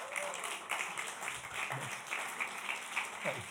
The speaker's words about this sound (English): One claps, we all clap, right?